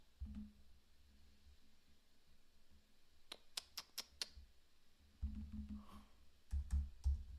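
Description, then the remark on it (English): A handful of sharp keyboard clicks from someone typing with one arm arrive in an uneven, slow burst, then a few more taps follow later over a low background rumble. Nobody speaks. “Typing with one arm is hard.”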